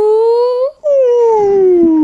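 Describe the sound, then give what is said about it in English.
A person voices a whale-like call: a loud, sustained tonal moan that rises slightly, breaks off for a brief moment, then resumes and slowly glides downward in pitch. “And then I start speaking whale, and then people find me that.”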